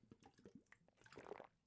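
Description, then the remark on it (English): A few quiet wet gulps and sips of water at the Fun With Friends NYC function, soft liquid swallowing sounds with small slurps, no talking. “I got to drink a little water here.”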